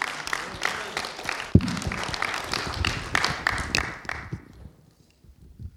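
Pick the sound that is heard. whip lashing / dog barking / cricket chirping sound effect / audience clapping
audience clapping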